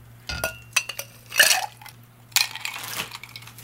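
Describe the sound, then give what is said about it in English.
Ice cubes clatter and clink into a mixing glass for a stirred cocktail in a few quick bursts, fairly loud, with brief scraping between drops and no talking. “So we'll do this. Ice in the mixing glass.”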